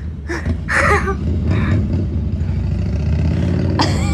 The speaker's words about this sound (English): There is a motorcycle going by.